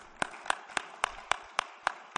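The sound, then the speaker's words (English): Steady, evenly spaced hand claps from an audience applauding mothers on Mother's Day: about eight sharp, crisp strikes in a regular rhythm, fairly quiet, with no voices over them. “A little round of applause for our mothers, please.”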